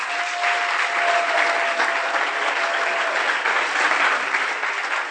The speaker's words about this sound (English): I think we should clap for Jesus at this point.